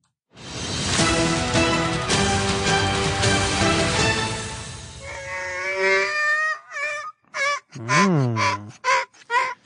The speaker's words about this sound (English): That's new. That's fresh. Thank you to the local news donkey. That sounds like it's giving birth.